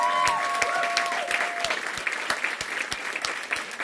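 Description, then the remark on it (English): A crowd at a TSA band performance bursts into steady applause, dense clapping that stays loud throughout, with a couple of brief whistled or cheering tones rising above the noise early on. “I mean, I know we gotta go, but can we just clap it up for the Black Boy Joy that's going on in the back of me right now?”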